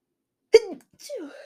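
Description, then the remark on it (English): A single sudden sneeze bursts out, sharp and loud at the start, followed a moment later by a brief voiced sound trailing downward. “Bless you.”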